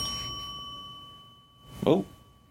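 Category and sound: signal or alarm, bell ringing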